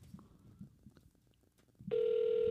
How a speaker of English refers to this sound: Oh, I think we're ringing. I think it's working.